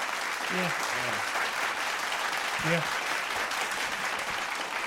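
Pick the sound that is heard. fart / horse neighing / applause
applause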